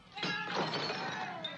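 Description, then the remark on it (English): A glass bottle shatters when struck in a game of glass bottle baseball: one sharp, loud crash followed by bright tinkling and ringing shards that scatter and fade over about a second, with no voices. “It does seem like a fun game to play if you're a bum, though. Absolutely. Glass bottle baseball.”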